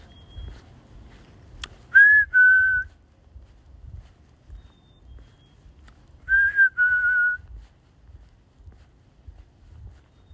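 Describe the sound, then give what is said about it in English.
A black-capped chickadee gives its clear two-note whistle, a higher note sliding down to a lower one, twice with a pause between, over a low rumble of wind noise. “You hear that bird? It's a black-capped chickadee.”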